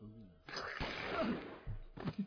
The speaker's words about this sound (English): Once again, excellent choice of gunfire there,